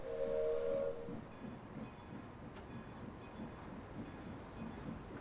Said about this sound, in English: She waves goodbye to the people on the platform as the wheels of the train begin slowly moving on the train tracks.